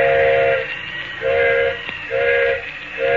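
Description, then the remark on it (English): A steam train whistle blows in a repeating pattern of short-long blasts, loud, over a steady hiss of steam and rumbling engine noise. The engineer of a stopped train up in the mountains is whistling for a flagman at night. “Engineer's whistling for a flagman.”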